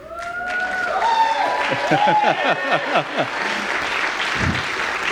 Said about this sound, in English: Y'all don't even know what you're clapping for yet. No, I'm just teasing. I'm teasing.